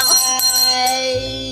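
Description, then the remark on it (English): A bell rings with bright, lingering tones, struck a few times in quick succession so the chimes overlap and hum on as they slowly fade. “No, this is the first time she's hearing the bell.”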